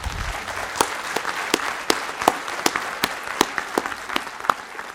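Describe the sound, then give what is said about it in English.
An audience applauds at the end of a talk, steadily, a dense wash of many hands with one crisp, louder clap standing out at a regular beat throughout. No one speaks. “So if I can ask everybody for a round of applause.”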